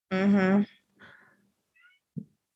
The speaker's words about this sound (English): tell that cat to settle down. I feel like she just wants to be on this podcast so bad. She just misses me. Hey, girl.